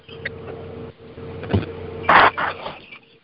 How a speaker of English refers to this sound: Just north of Lubbock. I am currently on a tractor trying to stop the sand from blowing. I got about an inch and a half on this field I'm on right now.